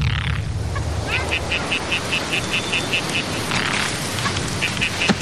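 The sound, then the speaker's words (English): A frog croaks in quick, evenly spaced high-pitched pulses that stop briefly and then start again, heard over a steady wash of rumbling background noise. “Hey, you hear that thing? You hear that frog?”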